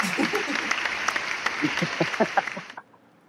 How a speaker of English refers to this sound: Right now, give me an applause.